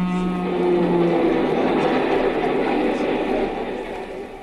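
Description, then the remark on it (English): A passenger train bound for New York roars by with a low, steady rumble and clatter, a brief horn-like tone sounding at the start, the noise thinning out as it moves away at the end. “As I ran out from under the bridge, not quite knowing what to do next, I saw a train approaching, bound for New York.”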